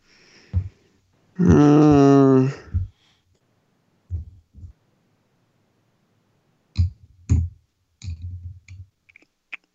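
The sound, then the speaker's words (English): A series of sharp tongue clicks comes in loose pairs with short pauses between them, after a brief hummed vocal sound near the start. “No, I was clicking my tongue.”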